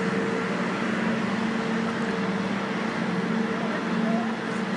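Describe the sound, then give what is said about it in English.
A route 43 city bus rumbles by in street traffic, its engine a steady, loud drone with a low hum that holds even throughout, with no clear rise or fade. “oh, there's the 43 bus, the 43.”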